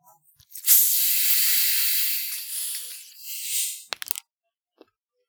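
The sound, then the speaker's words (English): A drink can cracks open with a sudden loud fizz that hisses steadily for about three seconds, swelling briefly before fading, followed by a few quick metallic clicks and a faint final tap, as drinks are opened to pour into a Yeti cup with ice. “It's time to crack these open.”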